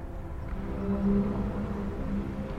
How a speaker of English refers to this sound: Hear her song travel the currents beneath you on the breath of Durugan, whales.